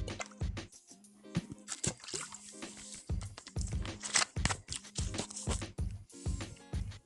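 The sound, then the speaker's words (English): Drinking water: a series of wet gulps and swallows with liquid sloshing, loud, in an uneven rhythm with no talking. “I'm going to take a sip of water before we get into this because, well, Again.”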